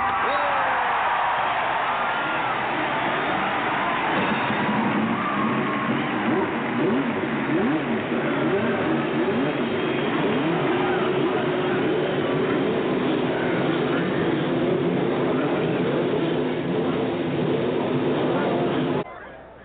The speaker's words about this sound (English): For those four words that we have all been waiting to hear. To give the traditional command is Chairman Emeritus of the Board of the Indianapolis Motor Speedway, …. Start your engines!